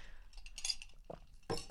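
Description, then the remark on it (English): A ceramic mug clinks a few times, followed by a brief slurping sip of coffee. The sounds are soft and there is no talking. “Sorry, needed a sip of coffee.”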